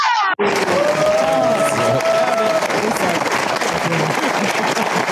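A loud burst of crowd applause and cheering erupts after a brief gap and sustains steadily, dense clapping mixed with whoops and a rising whistle-like cheer.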